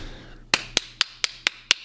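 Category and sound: human body sound, hand clapping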